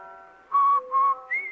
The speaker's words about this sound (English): No wonder Rinso users whistle while they wash.